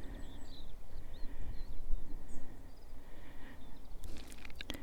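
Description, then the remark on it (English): Faint birds chirp and twitter in short scattered phrases over a low, steady outdoor rumble like wind, in quiet countryside with wildflowers and fields full of sheep, with a few sharp clicks near the end and no voices. “and it's completely quiet except for the bird song.”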